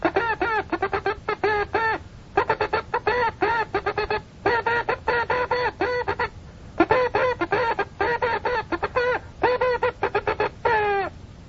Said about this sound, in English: You want to know how "what hath God wrought" sounds in code? You want me to send it to you? Okay, I know I'm a CW man. You better be ready for this. I'll send it to you in Morse code.